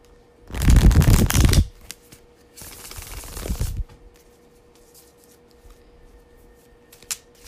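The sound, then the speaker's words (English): A Rider-Waite-Smith tarot deck is shuffled in two bursts: a loud, dense riffle of flapping cards, then a second softer, longer shuffle, followed by quiet room tone and a faint tap. “All right, so I'm going to shuffle the cards.”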